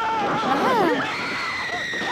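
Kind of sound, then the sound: sound effect, screams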